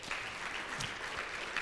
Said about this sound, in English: So would you just give them a round of applause?